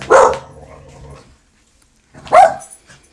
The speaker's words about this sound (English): They're saying hello. Yeah. You guys done? Ignore the dogs. Pay no attention to the dogs behind the podcast.